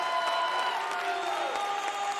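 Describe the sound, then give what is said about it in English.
An audience gives God a round of applause in a steady, dense wash of clapping, with sustained tones, probably an organ or keyboard, ringing underneath. No one speaks over it. “Give God one more round of applause.”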